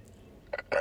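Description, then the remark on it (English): A sneeze breaks a quiet stretch: a short sharp burst, a brief pause, then a louder, breathy second burst with a slight vocal edge. No talking. “Bless you.”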